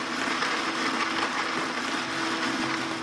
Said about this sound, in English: Activating blender.